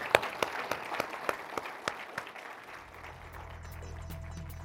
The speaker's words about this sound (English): And so thanks all of you for attending. I would like to thank our panelists. Give them a round of applause.